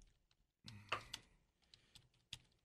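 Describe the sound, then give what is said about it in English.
Fairly quiet computer keyboard typing while someone looks something up: a quick flurry of clacking keystrokes, then a few scattered, irregular key taps with short pauses between them. No one speaks. “Do we need some typing music?”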